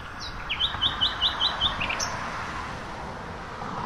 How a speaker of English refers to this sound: This is the first nightingale I've heard this year.